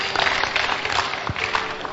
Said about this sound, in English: I don't know what you are clapping for